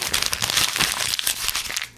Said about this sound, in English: And I don't know if you hear me crumpling up the paper, but that's exactly what I did. I know what that was supposed to be. It sounded more like you were violently eating a cookie, but that too.